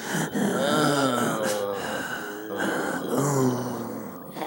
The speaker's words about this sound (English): Meanwhile, at the killer's swanky place, we again get some of that breathing.